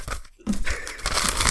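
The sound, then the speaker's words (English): Crackly rustling of a long sheet of paper being crinkled and handled as it is handed over, starting after a brief quiet pause and continuing steadily with sharp crunchy textures throughout. “I just been handed this.”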